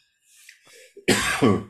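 A short throaty cough sequence from a person with a cold: a soft rasping breath, then two loud, harsh coughs in quick succession, with no talking.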